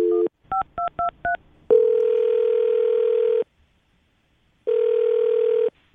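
A quick string of touch-tone dialing beeps, then two long electronic ringback tones separated by a pause, as the radio show Brooke and Jubal in the Morning places an outgoing phone call to a woman; no one speaks.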